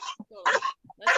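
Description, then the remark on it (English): A female dog in a car barks three times in quick, uneven succession, harsh and fairly loud, with brief quiet gaps and faint whimpering sounds between the barks. “If she doesn't stop barking, you can feel free to like mute me, or if anyone else wants to be coached first, that is totally fine because apparently she's crazy today.”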